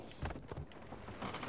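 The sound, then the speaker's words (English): In a video game, stormy wind roars over the sea during a storm in a steady, dense rush, swelling in loud gusts with churning water and creaking boat noise beneath, and no voices. “It's cause the storm, mate. We're in a storm.”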